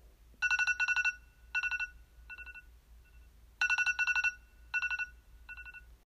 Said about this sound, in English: I wake up in the morning around 8:30 to the sound of my alarm.